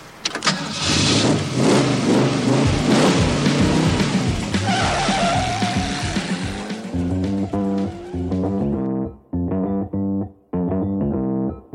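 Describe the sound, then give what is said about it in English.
A car engine roars loudly, its pitch climbing as it revs, then breaks into a series of short, sharp revving bursts separated by brief silences. “If you had access to a car like this, would you take it back right away?”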